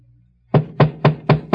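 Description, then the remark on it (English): Five firm knocks on a wooden hotel room door at the Prince Hotel in quick, even succession, loud, following a moment of near silence with a faint low hum. “and when the sergeant was a few steps behind me, knocked on the door.”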